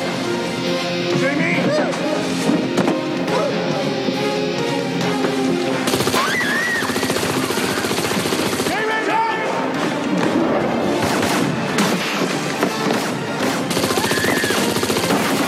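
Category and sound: sound effect, gunfire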